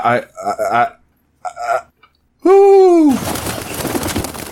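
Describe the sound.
After some brief talk, a person lets out a single loud, falling 'hoo' in imitation of an owl's hoot. A burst of rough, rushing noise follows right after.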